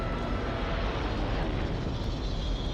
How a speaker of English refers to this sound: Suddenly, out of the charred and smoking ruins, shoots out a speedy rocket ship, narrowly missing Jane's plane. So, it's the Hood making his escape into the blackness of space.